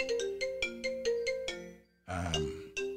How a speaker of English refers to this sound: You hear that phone ringing in the background?